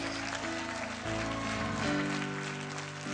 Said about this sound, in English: Come on, clap your hands and shout like he stepped in. Come on, clap.